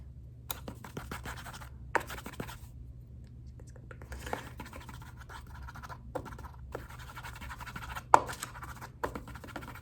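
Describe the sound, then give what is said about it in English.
Thin, dry scratching of the metal tip of tweezers, used in place of a pencil to take notes, dragged across paper in irregular broken strokes with short pauses and a few sharp clicks, fairly quiet over a low steady hum, with no one speaking. “So, I don't have a pencil, but I do have these tweezers. So, I'm going to use these.”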